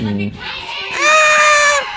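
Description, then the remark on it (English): A person lets out a loud, high, sustained scream that bends in pitch, a voice imitating a shrieking alien creature, preceded by a short, low vocal sound. “Yeah, stop screaming.”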